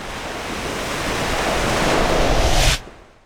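A big ocean wave hits the edge of a pier and crashes over a woman and four young boys on it, a loud hissing roar that swells steadily for about two and a half seconds, then stops abruptly. No one speaks.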